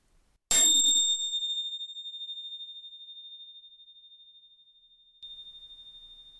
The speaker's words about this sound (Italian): Allora, proviamo a fare un esercizio se siete ancora qui e se ve la sentite, chiudete gli occhi per un momento e ascoltate questo suono delle campane e seguitelo fino alla fine.